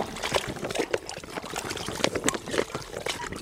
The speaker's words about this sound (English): it's a warm mixture of soup and meat. It's a stew, and the dogs love it. Mixing the meat.